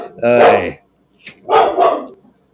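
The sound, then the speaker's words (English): A dog barks loudly: one drawn-out bark, a brief pause with a faint scuff, then two quick barks in a row. “Anyway, ignore the dog. He's a good boy.”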